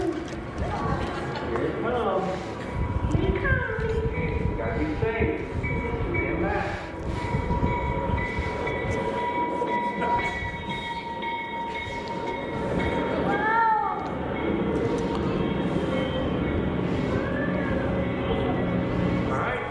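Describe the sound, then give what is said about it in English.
A train rolls past with a steady, heavy rumble and clatter, its wheels and horn-like tones rising at moments, as a little girl watches it, while voices can be heard over the noise. “It's a video that I'm going to show you here of a little girl seeing a train.”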